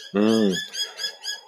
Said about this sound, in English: What surprised me / disappointed me, I'm sorry about the choir of birds in the background.